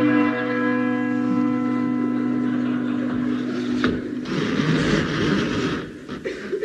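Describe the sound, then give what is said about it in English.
A large manor door bell, rung by a man who climbed a ladder placed against the door, rings out loud, its deep, resonant tone humming and slowly fading over several seconds before a rough, noisy clatter takes over. “Placing a ladder up against the door of Tintagel Manor, Mr. King Arthur Seagoon climbed up and rang the bell.”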